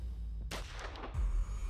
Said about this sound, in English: They heard muffled gunshots over the shouting.